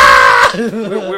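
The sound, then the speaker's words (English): A loud, high-pitched voice lets out a brief mock scream lasting under half a second, then gives way abruptly to lower, talking-like voice sounds. “Was your next line like, nobody could hear her screams either?”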